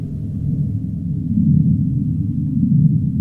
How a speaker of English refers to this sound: Sei whales, that low rumble in the south.